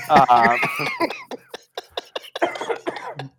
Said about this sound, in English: coughs on himself.